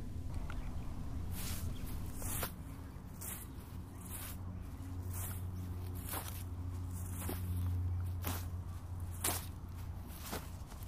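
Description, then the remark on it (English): Steady footsteps squelch across squishy ground wet from the moisture of a salt lake, by the water, about one every second, fairly loud, with a low rumble of wind over the water running underneath throughout. “The ground is squishy under my feet now from the moisture of the salt lake.”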